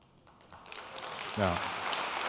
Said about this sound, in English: Now, I wasn't pausing for you to clap. I was pausing to see if I could hear Foley down there screaming and yelling right now.